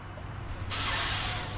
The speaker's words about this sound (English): 30 minutes out from Lincoln, trucks rumble through the GMP landfill in Milford, Nebraska.